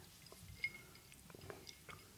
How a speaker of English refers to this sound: So, all we can hear is the tinkling of the ice in your whiskey glass.